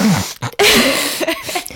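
Someone leans forward and blows their nose loudly into a microphone: a short snort, then a harsh, breathy blast lasting about a second that trails off into rough, sputtering bursts.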